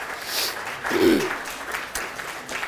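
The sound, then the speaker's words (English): An audience breaks into steady applause celebrating the announced birth of a baby girl, a dense rush of many hands clapping at once, with a brief cheer or voice rising through the noise partway through. “And yes, clap, clap.”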